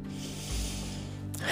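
A long, airy inhale drawn in through the nose by a person lying down during a breathing meditation, a steady soft hiss that swells slightly and ends in a brief, sharper rush of air, alone with no talking.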